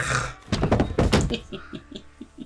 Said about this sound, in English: You hear a sound of somebody falling over.